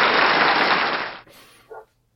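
A short, loud burst of dense clapping for a correct quiz answer fills just over a second, then drops off abruptly into a quieter tail with one brief final flutter before silence.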